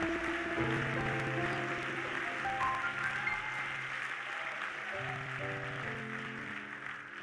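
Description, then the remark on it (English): An audience claps their hands to praise God in a dense, steady wash of applause lasting several seconds, with sustained musical chords playing underneath and no one speaking. “Come on, clap your hands and praise him for what he has done already.”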